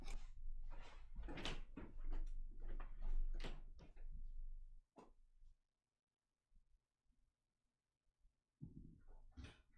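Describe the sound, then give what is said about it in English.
A door is handled and opened to answer a knock, with several quick clattering knocks and thumps over a few seconds, then near silence before another short burst of rattling. “I gotta check someone knocked on my door real quick.”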